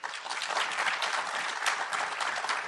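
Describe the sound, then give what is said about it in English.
Audience applause given as a vote on a quiz claim: dense, steady clapping from many hands, sustained for a few seconds at even loudness, with no talking over it. “Okay, if you think that world populations will stabilize around 2050 is the fiction, applaud.”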